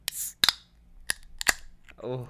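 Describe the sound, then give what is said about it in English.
A big can of beer is cracked open: a brief fizzy hiss and several sharp metallic clicks and pops, fairly loud, followed by a short stretch of someone speaking. “I'm about to go ahead and give you that ASMR because I know y'all love the ASMR.”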